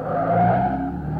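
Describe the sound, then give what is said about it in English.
A car engine revs hard as the vehicle pulls away, heading down toward Rosecrans, a loud, steady roar with a rising whine and a hint of tire squeal, with no voices. “He's in his car. Yeah, come on. It's heading down toward Rosecrans.”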